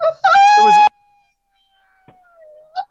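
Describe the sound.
A person lets out a short, loud, high-pitched imitation scream lasting about half a second, then near silence with a faint thin tone and a brief soft vocal sound at the end.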